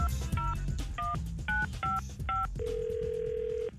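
About six touch-tone telephone dialing beeps in quick, even succession, followed by a longer steady tone held for about a second, with a low rumble underneath and no talking, as a number is dialed for a prank call to someone's father.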